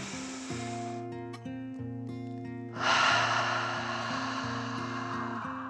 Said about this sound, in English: She took another breath in and out. Then one more deep breath in and out.